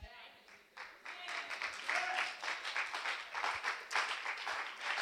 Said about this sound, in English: I didn't say that for the cute clap. I said that so that I have some warriors around me that's going to help me do war.